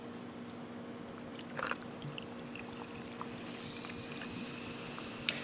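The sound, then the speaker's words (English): Ginger beer pouring into a glass: a steady, soft liquid rush with fizzy crackles and small pops scattered across the pour, lasting about five seconds with no one talking. “Every week it sounds like it's a sound effect, and it's not.”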